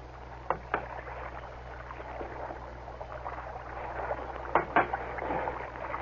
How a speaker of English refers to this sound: we keep rowing. And then what? What kind of a question is that? And then what? What am I, a fortune teller? We row until something happens. Till we come across a boat that's big enough to take us away from these rotten islands.